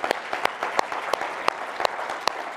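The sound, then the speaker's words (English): Sparse applause from a few churchgoers at Gateway church on a weekend, with a few distinct, sharp claps standing out over a soft, steady patter of hands. No voices, and the clapping stays fairly even throughout. “You only hear a few of us clapping because most of us that go to the church here at Gateway, they're working this weekend.”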